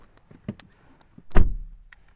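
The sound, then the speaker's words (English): A Mazda 3's front door opens with a few small clicks and rattles, then a loud, low thunk rings out briefly before fading. No one speaks. “Through that front door.”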